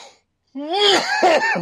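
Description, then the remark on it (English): A voice performs a raspy, strained coughing fit: a short burst of throaty, voiced hacks that rise and fall over about a second, fairly loud, imitating a draconic-shaped creature coughing. “It coughs?”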